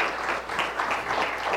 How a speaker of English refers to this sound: But let's thank you for sharing. I appreciate that. I'm going to give her a round of applause and thank you for that.